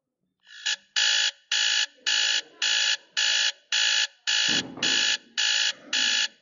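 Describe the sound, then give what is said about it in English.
An alarm clock rings in a steady series of loud, harsh beeping bursts, about eleven evenly spaced pulses with short gaps, insistent, with a low thump partway through. “Do you know what my alarm should sound like?”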